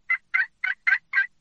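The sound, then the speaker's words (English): Six soft, evenly spaced turkey yelps made by a hunter blind calling on a turkey call, each a short raspy note in a steady rhythm, with no talking. “Sometimes you can just set up and start doing some blind calling, and I may just start yelping real soft, you know.”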